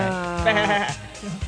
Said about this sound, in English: What does a goat say?